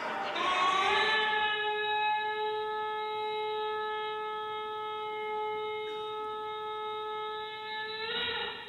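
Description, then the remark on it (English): A shofar, an instrument made from a ram's horn, sounds one long, loud blast lasting about eight seconds. It scoops upward at the start, holds a steady, buzzy, brassy pitch, and flares briefly before cutting off. “That's the sound of a shofar, an instrument that was made from the horn of a ram.”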